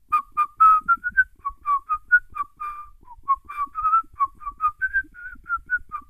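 human body sound, person whistling a tune

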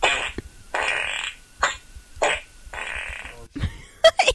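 sound effect, fart sound effect

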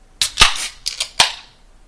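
food or drink, beer can cracking open

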